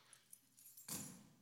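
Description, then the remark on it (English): A church key ring, one of six, jangles: a few light clicks at first, then a burst of bright, metallic rattling that keeps going as the keys shake. No one speaks. “Here's one of my like six key rings for the church.”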